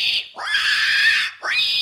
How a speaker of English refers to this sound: The squeals of a terrified pig will almost certainly unnerve passengers unfamiliar with the sound.